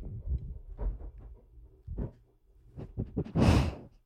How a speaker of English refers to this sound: You hear that big fucking dog just rubbing on the mic? She just wants to sit in my lap, and she just weighs 5 pounds more than I do, so it's kind of difficult.